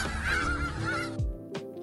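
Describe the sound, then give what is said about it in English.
Loud honking from a goose-like bird, a couple of harsh nasal calls in quick succession followed by a short gap and a final honk. “She does, in fact, say... Look at all those chickens.”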